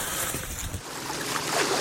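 nature, ocean waves lapping

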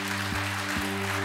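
crowd, audience clapping

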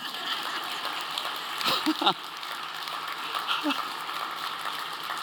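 crowd, audience applause

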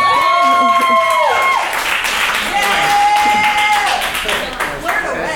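crowd, audience applause

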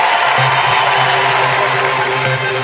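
crowd, audience clapping and cheering

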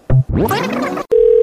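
signal or alarm, telephone dial tone

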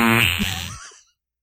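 human body sound, fart

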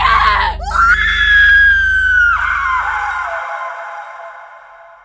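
human body sound, person screaming

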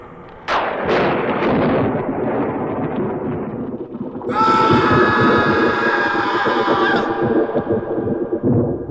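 sound effect, thunder crash sound effect

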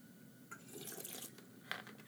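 household object, water being poured

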